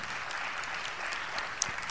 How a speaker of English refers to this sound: Let's give her a round of applause again.